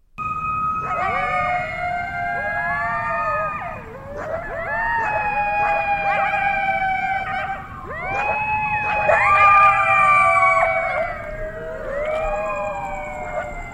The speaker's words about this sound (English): So I YouTubed it and now I'm going to subject all of you to the sound of coyotes howling.